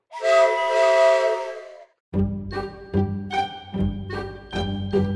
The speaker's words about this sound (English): The sound of the train whistle means it's time to play Walt Disney World Insider Free Association.